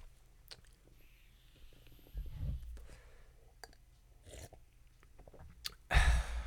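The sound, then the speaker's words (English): Someone sips unsweetened tea: soft wet mouth clicks and a brief slurp in the middle, ending with a louder, breathy sip, with no talking. “Sipping on the unsweetened tea because there's so much sugar in everything nowadays.”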